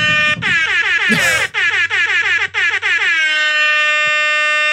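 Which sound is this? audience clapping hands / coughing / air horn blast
air horn blast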